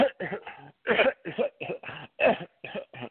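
A man coughs in a rapid, sustained fit of about ten or eleven harsh bursts with brief pauses between them, fairly loud, with no talking.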